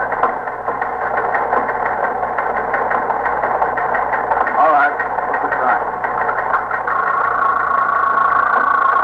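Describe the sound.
A teletype machine at a police precinct chatters away printing with a steady, rapid mechanical clatter that runs the whole time, moderately loud, while a man speaks briefly over it.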